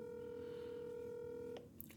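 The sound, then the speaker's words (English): A steady electronic telephone dialing tone, calling someone in Michigan where it is 11 o'clock at night, holds for about a second and a half, then cuts off abruptly, leaving faint noise and a soft click. No one speaks. “This is like, who wants to be a millionaire when you had to phone a friend?”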